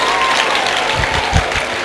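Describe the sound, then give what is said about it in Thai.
An audience at a gathering of pastors and business people breaks into sustained applause after the pastors from Burma are asked to clap, a dense wash of many hands clapping steadily at a loud level with no voices standing out. “We have some pastors here from ศิษยาภิบาลจากพม่าอยู่ไหนตบมือหน่อย”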